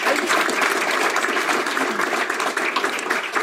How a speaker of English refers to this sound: Let's give Becky one more round of applause.